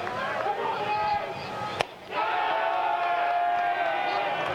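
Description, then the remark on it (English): A steady roar of many voices cheering and shouting from the Middle Tennessee Blue Raider dugout on the first base side at a baseball game, loud and sustained, broken briefly by a sharp crack before the crowd noise swells back up. “That cheer and roar you hear is from the Middle Tennessee Blue Raider dugout down on the first base side.”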